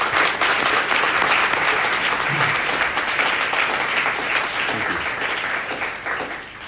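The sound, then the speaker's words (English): A crowd applauds Senator Gill steadily, dense overlapping clapping that holds a loud, even level for several seconds before easing off slightly at the end. “That, along with the strong advocate that you have in Senator Gill and her colleagues, how about another round of applause for Senator Gill?”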